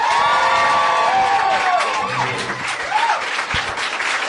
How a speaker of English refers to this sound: Yes. Please put your hands together for our very special guest, John Hodgman.